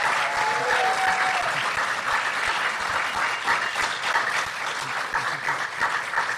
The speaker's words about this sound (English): Can we have a big round of applause for our two guests?